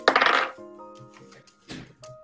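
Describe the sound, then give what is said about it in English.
Dice rolled for an attack against armor class in a tabletop role-playing game clatter and tumble across a hard surface in a loud burst, leaving a faint ringing tone, then a second, quieter rattle shortly after. No voices are heard. “My dice is stuck.”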